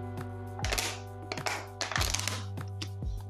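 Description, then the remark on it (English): Someone takes a quick sip of water: a few short clinks and soft thunks of a glass being handled, spaced out over about three seconds above a steady low electrical hum. “Let me take a sip of water real quick before I do the outro.”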